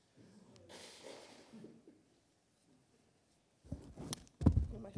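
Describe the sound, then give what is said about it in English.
A quiet breathy rustle, then after a pause a sharp burst of nose blowing by a snotty person after repeated sniffing, a forceful, snorting honk into a tissue near the end. “There's only so many sniffs you can do before you... You have to blow.”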